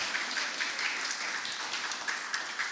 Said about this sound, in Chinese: 来，拍手拍手。